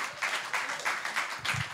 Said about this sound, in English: So please give him a big clap.